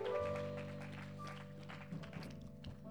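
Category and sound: crowd, audience hand clapping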